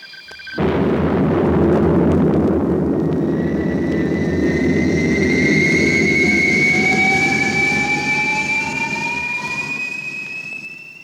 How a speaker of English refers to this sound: Yes, that's a spaceship taking off. I'll be in one of them soon, like a modern dragon with a roar and a hiss and a tail stretching from Earth to sky and way beyond.